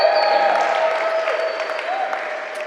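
An audience at One Hope's first Vision Sunday cheers and applauds steadily, dense clapping under sustained whoops and shouted voices, staying loud for the whole stretch before easing slightly at the end.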